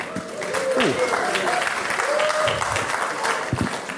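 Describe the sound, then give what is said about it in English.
An audience claps steadily for several seconds as a speaker is introduced to give a talk, a dense, even patter of many hands at a fairly loud level, with faint voices murmuring underneath. “I think it's always best to clap afterwards in case you disagree with what I'm about to say.”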